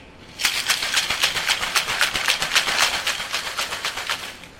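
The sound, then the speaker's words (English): Ice rattles inside a cocktail shaker holding a tiki drink with orange juice and falernum, in a fast, steady rhythm of bright, crunchy clacks, starting abruptly and continuing for about four seconds with no talking. “You're going to shake.”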